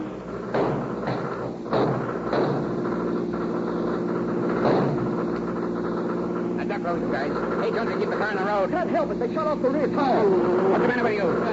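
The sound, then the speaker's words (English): A car engine roars steadily throughout, punctuated by a few heavy thumps, then tires skid with a loud, wavering high-pitched squeal near the end as the convicts' car takes a turn too sharply and skids, 18 miles from Petaluma. “Then, when they're 18 miles away from Petaluma, the convict's car takes a turn too sharply. The car skids.”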